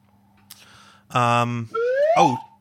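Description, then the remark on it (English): A slide whistle toots a steady, buzzy note, then glides smoothly upward in pitch, loud against a quiet background, with a faint low hum underneath. “I was thinking of the slide whistle.”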